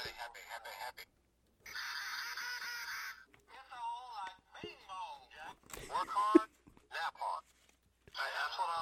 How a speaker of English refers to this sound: Can you give us a sample of the duck call? Very carefully, because there's lots of glitter on that.